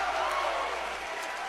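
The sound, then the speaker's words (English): The Kingston crowd cheers at a basketball game against West County in a steady, dense roar of many voices, holding at an even, fairly loud level for the whole short stretch without any clear single voice standing out. “Man, that Kingston crowd is vocal here tonight.”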